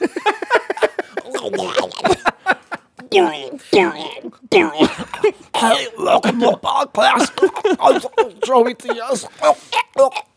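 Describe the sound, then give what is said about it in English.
A voice imitates a wet, phlegmy gurgle and throat clearing, mimicking a person who sounds like they have liquid in their throat, a continuous burst of gargly, rasping vocal noise lasting several seconds with short breaks. “I can't stand when people sound like they got liquid in their throat. Like, just clear your fucking throat, you know?”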